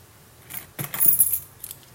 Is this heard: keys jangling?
yes